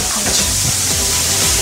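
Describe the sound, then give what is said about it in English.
Chanterelle mushrooms sizzle steadily in a paella pan, a loud, dense crackling hiss with no break and no voices over it. “Mushrooms, baby. Right. Go. Mm. Pour on, go for it.”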